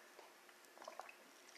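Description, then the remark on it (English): Soft, wet slurping and little liquid squishes as someone sips regular water from a half-full water bottle, a short cluster of quiet gulps in an otherwise hushed moment with no talking. “It's regular water today. No lemon water.”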